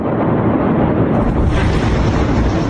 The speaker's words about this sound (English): The city is reeling today after an explosion estimated to be one-fifth the size of the nuclear blast which devastated Hiroshima.